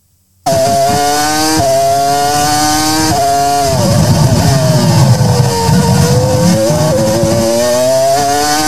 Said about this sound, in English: Oh boy, didn't those cars drive fast at the France Grand Prix? Didn't they go fast?